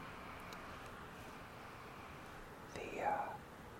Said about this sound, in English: I'm waiting for this car to go by.